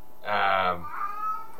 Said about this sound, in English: is that your cat? Yeah, I don't know what he wants.